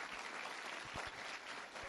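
Steady audience applause fills the whole stretch, a dense wash of many hands clapping at an even level, with no voices standing out above it.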